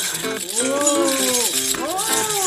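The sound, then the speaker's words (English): A continuous, fairly loud rush of coins rattling and clinking as they pour into a counting machine, with a tonal hum that swoops up and down underneath. “Dump all of your coins into this machine and let's see how much you get.”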